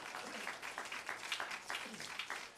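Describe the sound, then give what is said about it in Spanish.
An audience breaks into sustained applause of praise, a dense, steady wash of many hands clapping at once, with a few voices calling out faintly within it. “Dicen aleluya, den un aplauso de alabanza.”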